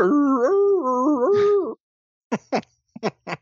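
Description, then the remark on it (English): A female dog, Dawn, lets out a long, wavering howl that rises and dips like an ambulance siren for nearly two seconds, then follows with four short, sharp yelps after a brief pause. “Man, she can howl it. She can be like a little ambulance.”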